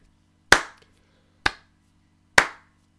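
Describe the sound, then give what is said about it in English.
Three slow, deliberate hand claps spaced about a second apart, each sharp and bright with a short decay, over a faint low hum and no speech. “Like, what? Slow clap.”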